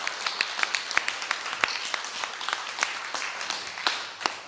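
A crowd applauds with a dense, steady patter of many overlapping hand claps. Sharper individual claps stand out now and then, and the clapping holds at moderate loudness for several seconds.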